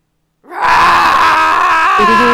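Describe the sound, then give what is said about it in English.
After a brief silence, a loud, sustained scream bursts in and holds steadily to the end, its pitch shifting slightly near the close, with no talking around it. “Screams there you go.”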